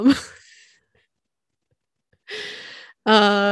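A small dog, Pumpkin, snorts and snores: a quick snuffling burst, a pause, then a raspy breath and a louder, buzzing snore-like exhale. No one speaks.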